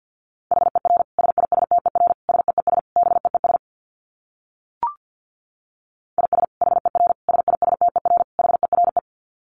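Rapid Morse code at about 50 words per minute: a steady mid-high beep keyed in quick dits and dahs, in two bursts split by a pause of silence and a single brief click.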